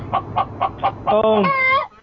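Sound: chicken clucking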